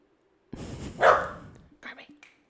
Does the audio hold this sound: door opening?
no